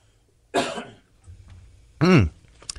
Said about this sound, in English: Excuse me, I got to clear my throat.